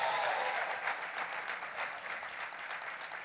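An audience gives a triple applause for apostle Estela Maris Agüero, dense clapping filling the whole stretch at an even, fairly loud level, with no voices standing out above it.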